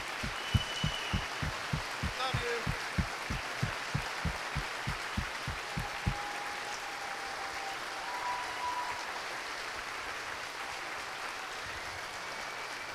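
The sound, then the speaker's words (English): An audience gives a standing round of applause for a former U.S. Marine who just had leg surgery, with steady, rhythmic clapping, about three beats per second, for roughly six seconds, then the claps dissolve into a softer, continuous wash of scattered applause and crowd noise. “Hero, standing round of applause.”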